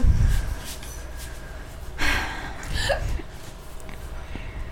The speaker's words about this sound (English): Hiccup. Affirmation hiccup. Is it affirming me or affirming you? Probably me.